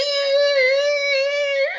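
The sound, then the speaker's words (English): A voice imitates screeching office chair wheels with one steady, high-pitched, nasal squeal held for nearly two seconds, ending in a quick upward wobble. “Well, even better would be there is some guy who just like pushes Eric Roberts' chair into the next spot. Right, they like track it. It's making that screeching noise, like.”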